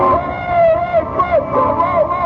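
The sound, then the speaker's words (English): A large crowd in an auditorium roars and cheers loudly and continuously as the man of the hour stands up, a dense wall of many voices rising and falling together with no single speaker standing out. “And the thunder of applause rolls out over the auditorium.”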